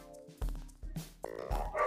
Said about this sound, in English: My dogs are so loud.